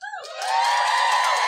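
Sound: audience cheering and whooping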